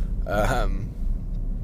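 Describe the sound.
A single short vocal burst, a voice mimicking a revving race car engine with a wavering, buzzy pitch, followed by a low rumbling background hum.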